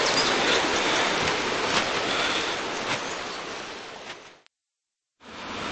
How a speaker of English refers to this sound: Okay, we've come back under cover because it started raining quite badly now, and we're getting very wet. And cold. And cold.